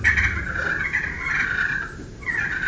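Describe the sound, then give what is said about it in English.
A continuous, rolling turkey purr scratched out on a friction call, a soft fluttering trill that holds steady, dips briefly, then resumes, with no talking over it. “But I'll sit there a lot of times and do just light little purrs like that”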